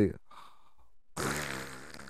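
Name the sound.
voice imitating a snore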